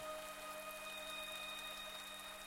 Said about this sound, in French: Tu sens sur ton visage des gouttes fines, le grondement d'un orage amené par l'orgue. Il pleut.